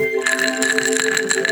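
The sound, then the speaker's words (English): A Negroni cocktail being mixed: glass and ice clink repeatedly in a steady, busy rhythm, with bright, sustained ringing tones over a constant rattle. Nobody speaks. “You hear that? ASMR? Doing some ASMR. It's a Negroni.”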